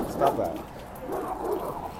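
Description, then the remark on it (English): A dog yips and whimpers at other dogs in short, high bursts, with a louder cry near the start and softer whines after, set against a faint background murmur. “Dog is trying to cause drama with the other dogs.”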